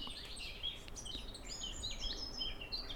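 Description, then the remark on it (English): Chiffchaff song with short, high chirps repeating in quick succession, fairly faint and set against a busy backdrop of other birds calling outdoors, with no voices present. “The chiff-chaffs are back with me.”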